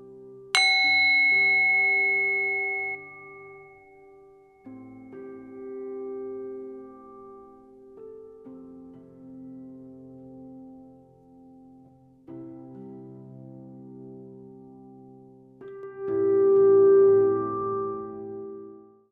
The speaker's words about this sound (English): Let's end this meditation today, again noticing the sound of the bell and listening to it until you can no longer hear it.